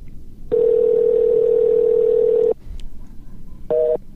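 A loud, steady telephone dial tone hums for about two seconds after a call drops because the other person's phone died, cuts off abruptly, and after a short pause a brief two-pitched beep sounds over faint line noise.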